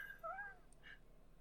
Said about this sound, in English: That's a real dog! It's a real dog.